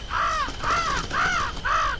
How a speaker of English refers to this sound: Come on, Mr. Crow, please. Just a little bit, please. I'm so hungry.